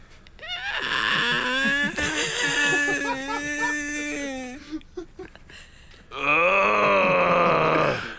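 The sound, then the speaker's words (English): A man's voice imitates a stressed-out yucca plant screaming: long, strained, wavering groans and whines that rise and bend in pitch, a short pause, then a final higher, harsher wail. “I did an impression of a stressed out yucca plant.”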